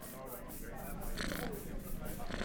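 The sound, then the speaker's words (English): A cat gives a short, fairly loud meow partway through, then starts another right at the end, over a steady low background hum. “Yeah, I know, you're a cat.”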